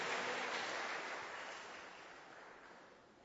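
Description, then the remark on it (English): A church audience gives the Lord a clap offering after a prayer, clapping together in a dense, steady wash of applause that slowly tapers off over a few seconds, with no voices heard. “Give the Lord a wonderful clap offering and may be seated.”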